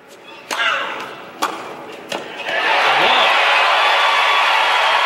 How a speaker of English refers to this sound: here's that first clip you heard when Davenport hits a backhand winner down the line